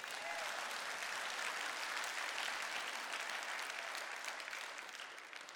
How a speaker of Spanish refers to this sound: Date un aplauso ahora.